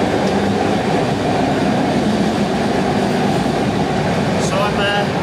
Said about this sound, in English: Well, you can hear me because it's quite loud up this end of the train. But this is coach one. I've come to the other end. That way, we're in a tunnel as well. So in there is the loco.